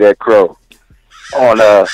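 bird, crow cawing sound effect

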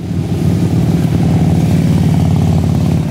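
vehicle, motorcycle engines revving

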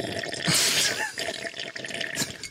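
household object, water sloshing

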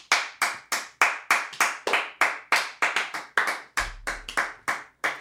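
crowd, people clapping

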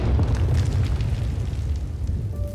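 sound effect, bomb explosion

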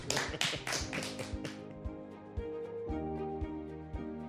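crowd, applause

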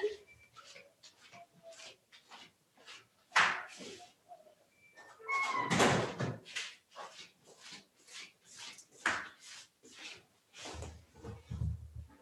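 household object, door being shut

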